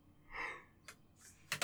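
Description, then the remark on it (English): A single quiet yawn: a drawn-out, breathy open-mouthed inhale that fades into a few short, airy breaths and sniffs, with no talking. “See? That was a real yawn.”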